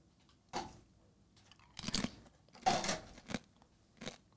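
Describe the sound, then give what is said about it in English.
Someone crunches on a chip, a few sharp brittle bites and chews in quick uneven bursts, with brief quiet gaps between them and no talking. “I just feel like you're eating chips weird.”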